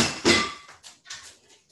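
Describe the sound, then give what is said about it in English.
A pot blown off by strong wind coming through an open door in a house tips over and strikes a hard surface with a loud ringing crash, followed by a few fainter clattering bumps as it rolls and settles. No one speaks. “It's really windy in my house and I have a door open. I think a pot just blew off.”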